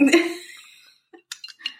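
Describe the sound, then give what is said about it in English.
Ice clinks against a glass holding an alcoholic drink, with a bright ringing tone that fades over about a second, then a few quick, lighter clinks and taps follow. “is that your glass? Do stuff. It just made like a weird noise. Maybe it was ice?”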